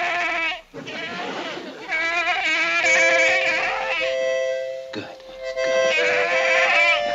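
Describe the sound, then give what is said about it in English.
A harmonica (French harp) plays in wavering, reedy chords, with sustained notes and short breathy bursts, while a voice briefly speaks over it. “And that's when they play the French harp to try and get him to calm down.”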